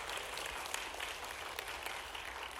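An audience claps together in praise to the Lord God, sustained, dense applause, a steady wash of many hands striking at once with no single beat standing out, holding even in loudness throughout.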